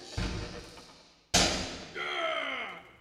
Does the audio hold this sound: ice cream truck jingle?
no